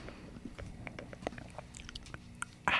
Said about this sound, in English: Let me get a little drink.